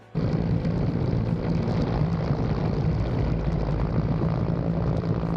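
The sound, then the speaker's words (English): A loud, steady helicopter roar with a low rotor drone and engine whine kicks in abruptly and fills the whole stretch without letting up. The helicopter has a flag painted on it and appears in footage, released by Yemen, of an Israeli cargo ship being seized. No voices are heard. “They have their flag painted on this helicopter.”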